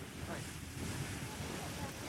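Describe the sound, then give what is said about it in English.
A boat rushing through ocean waves, with a steady, loud roar of churning water and buffeting wind noise on the microphone throughout, no distinct individual impacts standing out. “I would go a little slower when I hit the wave, maybe.”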